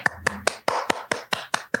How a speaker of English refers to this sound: Felt like that required a round of applause.